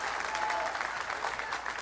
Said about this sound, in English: If you care about the blessing being returned to you, somebody give the Lord a big hand clap. Be excited about this.